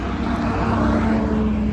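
A helicopter drones steadily overhead in Salt Lake City, a loud continuous engine rumble with a low whirring tone that holds evenly throughout, with no voices present.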